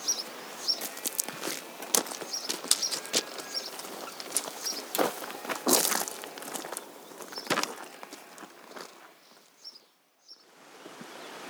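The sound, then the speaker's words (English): Footsteps push through dense bracken by the River Derwent, an irregular run of rustling, swishing crunches that quieten near the end, with a few faint high bird chirps in the background and no voices. “So we'll cross the River Derwent and we'll beat our way through the bracken.”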